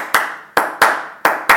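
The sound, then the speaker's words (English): Five sharp hand claps ring out at a slightly uneven pace as the character Anil claps, each one loud and crisp with a short fading tail. No voices are heard. “Anil claps.”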